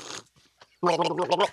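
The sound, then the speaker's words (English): A short slurp and a few soft gulping clicks of someone sipping and swallowing water, then a loud, voiced gurgling sound like gargling. “I mean, I'm going to take a sip of water.”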